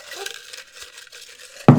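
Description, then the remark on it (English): Dry rustling of colorful paper slips, bearing fun questions and conversation topics, being stirred and drawn from a glass mason jar, with a brief louder knock against the glass at the end. No one speaks. “But for new listeners, this is my mason jar full of colorful pieces of paper with fun questions and topics of conversation. And we're just going to draw a few and talk about them.”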